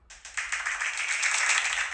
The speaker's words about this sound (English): That's a crazy clap you got right there.